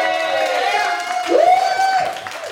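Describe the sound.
At a comedy show, an audience claps and cheers steadily for a comedian, voices whooping over the applause, with one rising shout standing out midway before the noise eases slightly.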